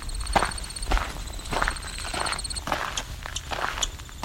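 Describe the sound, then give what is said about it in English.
Steady footsteps crunch along the Dofasco Trail in a regular walking rhythm, about two steps per second, with faint high-pitched birdsong and a thin insect-like tone running in the background. “walking down the Dofasco Trail, which cuts alongside Corrie, active Corrie, opposite of a nature sanctuary.”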